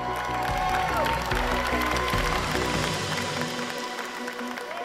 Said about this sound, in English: At least half the room, in my memory, leapt to their feet and started applauding, which felt like such a win, like such a win.